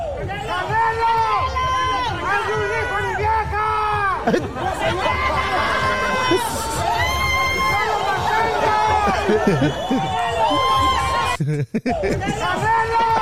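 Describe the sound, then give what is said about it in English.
A man yells loudly and energetically over a dense, noisy crowd that cheers and chatters continuously for the whole stretch, with a brief dropout near the end. “That's the passion behind that man's scream, bro.”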